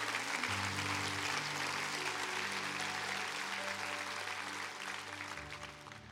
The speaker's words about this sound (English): Come on, clap your hands real big for that.